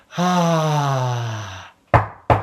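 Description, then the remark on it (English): A long, falling groan-like vocal tone fades out, then two solid, fairly loud knocks on a wooden door land in quick succession. “Knock, knock, knock.”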